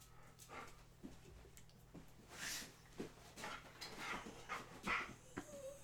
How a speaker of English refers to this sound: I don't know why the dog is going to get all fussy all of a sudden, but that's what happens.